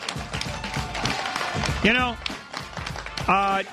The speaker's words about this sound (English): Yeah, see? Yeah. Yeah, that's real applause for those of you listening, okay?